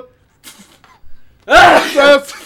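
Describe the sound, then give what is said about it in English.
A single loud sneeze bursts out after a brief quiet breathy lead-in, with a sharp noisy onset trailing into a short voiced tail. “Sneeze.”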